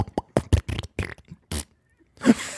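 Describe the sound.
A voice imitates a string of quick farts let out while climbing a long staircase, about eight short sputtering bursts in a choppy rhythm, fairly loud, ending in a longer, breathy raspberry.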